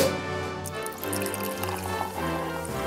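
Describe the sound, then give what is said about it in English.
A royal cocktail made with Boodle's Gin pours steadily into a glass for a few seconds, a continuous gurgle and trickle with a resonant tone as the glass fills, with no one talking. “Let's pour ourselves a royal refreshment.”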